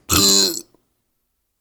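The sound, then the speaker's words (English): A single loud burp, rough and drawn out for about half a second, then silence. “Belches. Yes. Burps that.”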